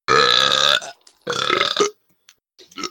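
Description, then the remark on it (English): Two loud, deliberate burps in quick succession from two people, the first long and resonant, the second shorter and rougher, followed by a few faint gulping or throaty sounds. “Was that just one of you, or both of you can burp like that?”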